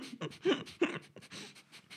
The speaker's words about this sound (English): I'm not putting you munching on a banana directly into the microphone on this. Stop breathing so hard.